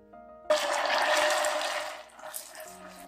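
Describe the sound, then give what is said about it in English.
About 20 grams of boiling water is poured into a saucepan of red-brown caramelized sugar, which is then shaken, with a sudden loud, bubbling hiss that surges for over a second, then fades to a quieter simmer and faint clinks. “Without stirring, when the sugar turns red-brown, add 20 grams of boiling water and shake well.”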